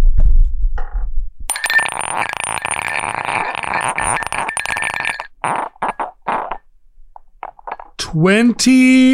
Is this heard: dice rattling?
yes